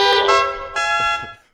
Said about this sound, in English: You like the horn that plays La Cucaracha.